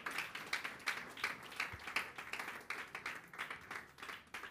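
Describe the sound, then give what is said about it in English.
An audience claps steadily together for the instrumentalists as they reposition, a dense crackle of many hands with a loose, rhythmic pulse running through it, moderately loud and continuous, with no voices. “Let's put our hands together for them as they reposition.”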